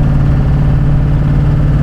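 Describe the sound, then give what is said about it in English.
A pickup truck engine drones, loud and low, during normal acceleration, holding a steady, even pitch as the truck shifts gears at 2,400 RPM, with no voices over it. “So here's, you know, normal acceleration. Truck shifts at 2,400 RPM. It just kind of calmly goes about its business.”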